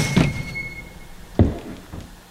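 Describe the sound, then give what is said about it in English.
A store's spring-loaded screen door flings back against the door's siding with a hollow wooden thump as the storekeeper steps onto the porch, then a second heavy bang about a second later, the door spring's thin squeak lingering faintly near the start. “"Screech!" cried the spring on the screen door as the door flung back against the door's siding with a bang.”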